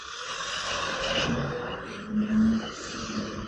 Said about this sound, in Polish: Jakaś mini śmieciarka tu mnie hałasowała.